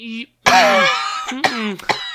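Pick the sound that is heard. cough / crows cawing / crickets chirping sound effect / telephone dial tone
cough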